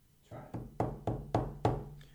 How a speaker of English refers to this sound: Can I bang the table now?